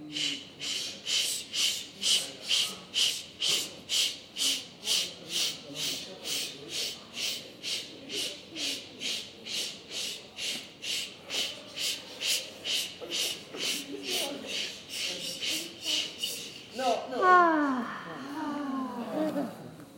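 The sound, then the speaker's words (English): Forceful breathing in a quick, steady rhythm during a guided deep-breathing exercise to elevate mood, about thirty hissing breaths in a row, each one loud and airy, ending with a longer, rougher exhale and a shift in sound. “And we're going to take a couple deep, deep, deep, deep breaths.”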